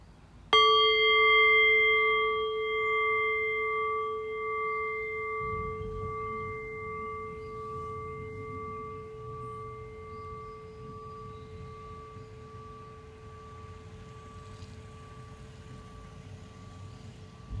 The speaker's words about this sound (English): So in the next few breaths, I'll ring the sound of the bell again. The invitation here once again is to rest awareness on the decay of the bell. Allow the fading bell to guide your awareness into silence.